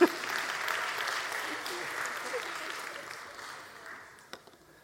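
A room of people applauding steadily for a few seconds, a dense patter of clapping that gradually thins and fades, ending with a couple of last scattered claps.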